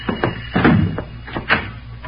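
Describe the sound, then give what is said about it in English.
Several dull thumps on a door, irregularly spaced, with no voices, like someone knocking or rattling to be let in. “Come on in, Johnny boy. The door ain't locked.”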